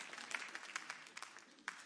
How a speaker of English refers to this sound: No, I think you need a clap.